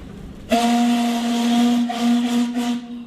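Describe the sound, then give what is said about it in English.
The whistle of the steamship Earnslaw sounds abruptly and holds one long, deep, steady note, its breathy hiss of steam riding over the tone for nearly three seconds, with no voices. “She loves the feel and the sound of the Earnslaw and how it lists to one side depending on where everyone is standing.”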